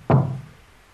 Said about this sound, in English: I'm inside. Don't you knock on my door.